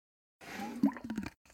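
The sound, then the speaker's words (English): A wet sputter as water is spat from a mouth: about a second of spraying, gurgling splutter with a voiced edge, followed by a brief, fainter splash. “Just spit your water out.”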